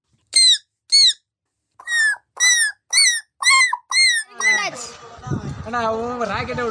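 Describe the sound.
A boy doing bird mimicry, filmed for an Instagram reel, imitates bird calls: seven short, high, shrill chirps in a steady rhythm, then a longer run of warbling, trilling notes with a lower vocal tone underneath.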